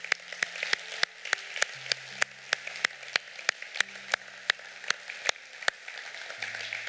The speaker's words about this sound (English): Let's just give God a big old clap offering right now for the people that accepted Christ.